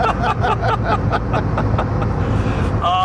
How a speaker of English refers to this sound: I don't know if you guys will pick up the audio of the sound of the truck or the whistles in the podcast version of this. I certainly hope we get it in the Precision Charger, once it lights, game fucking over, man.